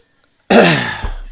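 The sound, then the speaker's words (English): A single abrupt, throaty cough bursts out after a moment of silence, fairly loud, with a rough tail trailing off over the next second. “sorry there for coughing.”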